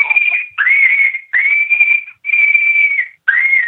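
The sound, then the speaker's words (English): Coyote pup distress screams from a game call: five loud, drawn-out, high-pitched wails in quick succession, each sliding up at the start and holding steady, with brief gaps between and no talking. “But this is coyote pup screams. This is a coyote that's in distress. He's hurting.”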